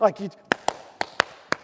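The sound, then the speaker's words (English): A short vocal sound, then six sharp hand claps in an uneven, halting rhythm, with pairs and gaps between them, crisp and fairly loud against a quiet background. “I can never clap right.”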